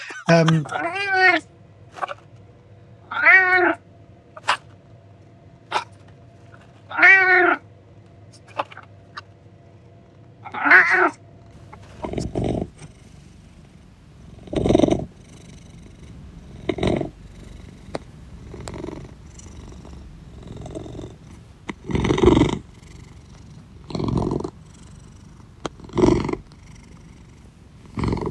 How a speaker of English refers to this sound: And I just thought he was doing like a really good deep angry purr vibration. I thought, I bet if I record that, pitch it down, reverse it, I bet that sounds kind of cool. So I did, and it did sound cool.